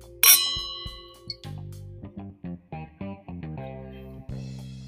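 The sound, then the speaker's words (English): Glasses clink once in a toast, a bright ring that fades quickly, followed by a series of short, rhythmic tonal notes like music playing. “So if you guys want to try that, you should. Cheers.”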